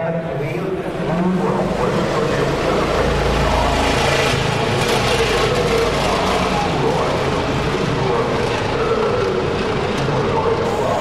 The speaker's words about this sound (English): The cars are coming round now and forming up for the dummy grid.